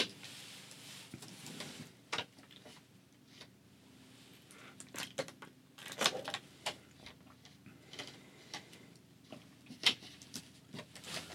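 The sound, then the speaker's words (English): Someone drinks from a thin, generic-brand plastic water bottle that crinkles and crackles, giving irregular sharp pops and snaps over several seconds, with no talking. “Sorry, every time I drink water is like super noisy because I only could afford the generic brand type of water.”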